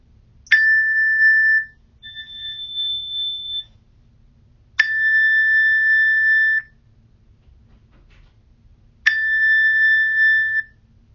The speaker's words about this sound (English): And at this point, as we're moving towards the end of this meditation, opening yourself to the sounds of the bells.